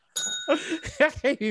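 A single bright electronic bell chime played on a keyboard rings out clearly, its shimmering tone lingering for nearly a second as a voice begins talking over it and continues after it fades.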